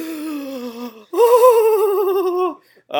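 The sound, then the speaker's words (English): A single voice imitates the gasp of surprise of about a third of the Larry Vickers fanboys at a training session: a brief rising sound, then a drawn-out, wavering 'ooh' held for over a second, fairly loud, with no other talking. “And you could hear about a third of the Vickers fanboys, the dudes that were just in love with him, gasp.”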